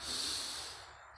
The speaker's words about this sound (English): So let's do our deep breathing while we're listening to the symphony.